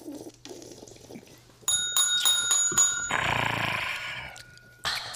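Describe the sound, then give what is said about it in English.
A small, bright bell rings loudly several times in quick succession, its tone lingering before a burst of rushing noise takes over. “Hashtag so, sell the bell.”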